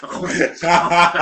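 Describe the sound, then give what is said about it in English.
A loud voice makes wet, slurping tongue noises in imitation of a hungry dog lapping up food, in two continuous bursts split by a brief pause. “I'm like a hungry dog, like, lapping up his food.”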